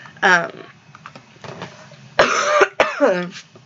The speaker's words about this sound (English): I want to apologize for how many times I'm going to cough or clear my throat. I can just always pause and we'll just cut it out.